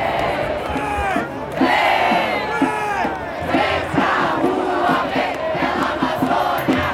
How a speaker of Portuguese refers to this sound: não tem direção central, então está um ar bacana, uma espécie de passeio, onde várias rodas de batuque, de grito, de conversa, cada tribo com sua bandeira.